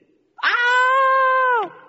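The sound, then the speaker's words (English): A girl lets out a single loud, high-pitched scream at the sight of a lizard at home in Florida, holding steady for over a second before dropping off sharply at the end, with no talking. “And I was in my room one day when I heard this scream.”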